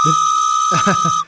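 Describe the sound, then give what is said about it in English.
A loud, steady train whistle sound effect blows for just over a second and then cuts off abruptly, with brief bits of voice sounding faintly beneath it. “that hype train whistle better be for the defense, because that's what's carrying the day right now.”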